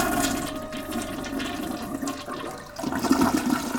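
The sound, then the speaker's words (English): A toilet flushes, a steady rushing gurgle of water that swells again near the end as the tank refills, with no voices. “Lucas flushed the toilet and slammed down the seat.”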